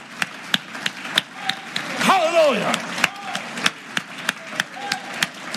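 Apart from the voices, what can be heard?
audience clapping hands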